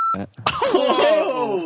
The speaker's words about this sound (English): Whoa! That's getting beeped.